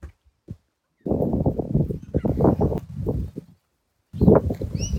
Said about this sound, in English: Birds everywhere today.